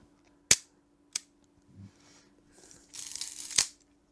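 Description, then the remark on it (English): Sharp mechanical shutter clicks snap twice on a film camera on loan from Jeremy North, followed by a soft rasping film-advance wind and a longer whirring crank ending in another crisp click, with no voices. “I've got something in front of me which I'm really, really pleased about to have, and it's not my camera, it's another camera on loan from the wonderful Jeremy North, and I'm gonna let you hear this shutter.”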